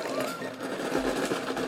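A steady, rapid rattling clatter, like ice cubes shaken and jostled inside a bucket, continuing at an even, moderate loudness for under two seconds with no voices.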